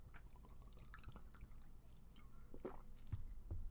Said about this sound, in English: One second. Water break.